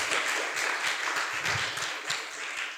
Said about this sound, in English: And I'd also like us to all give a round of applause to our fabulous panellists. Thank you.